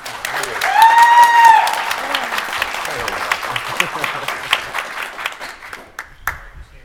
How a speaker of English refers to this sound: Can I get like a big round of applause for Empowered real fast?